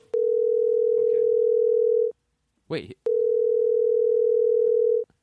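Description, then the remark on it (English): A telephone ringing tone heard over a speakerphone: two long, steady, even-pitched tones of about two seconds each, with a short gap in which someone briefly speaks. “He's ringing the phone as the sound effect, but the real phone is ringing, too.”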